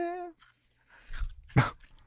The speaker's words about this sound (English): Will you crunch in the microphone?